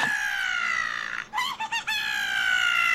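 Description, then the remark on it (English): A hawk gives a loud, piercing screech that holds steady, breaks into a few choppy wavering bursts, then stretches out again into a long shrill cry. No one speaks. “Oh my god, there's a hawk.”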